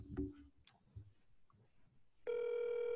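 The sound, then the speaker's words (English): A phone call rings out over a speakerphone, the phone held up to a speaker so everybody can hear: after a few faint clicks and short electronic tones, a loud, steady ringing tone starts up and holds to the end. “Let's just call him.”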